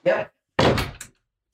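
A door is opened to let a dog out: a short creak or thud, a brief pause, then a longer rattling opening with a final click, all fairly loud.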